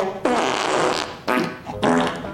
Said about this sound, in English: That goes on about 3 minutes, y'all, just farting. Just farting. Filling time. Mm-hmm. Just filling time. Filling it with farts.